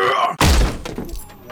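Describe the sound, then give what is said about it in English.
A massive 12-foot door is kicked open with one sudden heavy thud and a splintering crack, followed by a short rattle that fades over the next second. “He squared up the door and planted a heavy kick, flinging the door wide open.”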